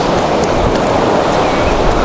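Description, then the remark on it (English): Ocean waves break on a sandy beach with dunes under a grey sky in a steady, continuous roar of surf, a broad hissing wash with no pauses and no voices. “I'd really like to get close to some of these breaking waves, but I'm limited to a 40mm lens.”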